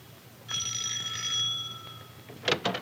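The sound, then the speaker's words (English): A doorbell rings once in the evening with a bright, sustained metallic tone lasting over a second, followed by a couple of short, sharp clattering noises, with no talking. “And so, this evening, Penny's doorbell rings.”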